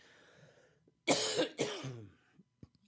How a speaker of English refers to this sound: I'm sorry I keep coughing, but my allergies are really killing me. It makes me cough.